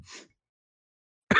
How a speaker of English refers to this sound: God damn it! I'm trying not to cough so much.